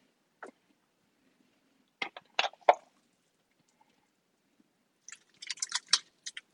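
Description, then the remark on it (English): Chunks of chopped chicken drop with soft, wet plops and squishes into a pot of thick chili, in two short clusters of splats and scrapes. Fairly quiet, with no talking. “And put it right into here with our chili.”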